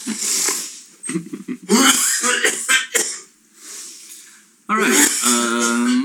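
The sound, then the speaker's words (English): A person coughs in a rough series of hacking bursts, with raspy breaths between them and a strained, voiced throaty sound near the end. “Now I'm getting a good cough.”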